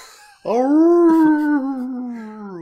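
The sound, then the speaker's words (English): Several people in a bar imitate wolf howls together, a loud sustained wavering cry starting abruptly and holding for about two seconds before trailing off, with voices blending into one drawn-out howl. “I think if we want to catch the mayor's attention, we should all start howling.”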